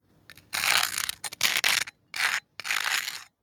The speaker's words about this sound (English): So this month's Toast Foley, I decided to send the sound of toast to see what it would sound like on Mars. So I've sent you an audio file. The first example is on Earth, as was recorded, and then it's followed by on Mars.